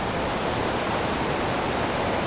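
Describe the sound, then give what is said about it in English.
Steady rain falls with a dense, even hiss that holds constant throughout, without pauses or distinct drops standing out, and no voices. “Oh, and the rain's falling too.”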